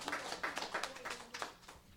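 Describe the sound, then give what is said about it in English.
A small crowd claps for a young girl in a brief burst of applause, steady and moderately loud, tapering off slightly toward the end. “So let's give her a round of applause, because I think all the kids are pretty good.”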